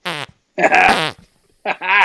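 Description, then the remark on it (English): A man imitates fart sounds by blowing against his hand over his mouth: three loud, buzzy, wet bursts, the middle one longest, clear with short pauses between. “puts his hand over his mouth and makes a fart noise, like.”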